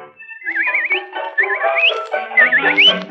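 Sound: human whistling a tune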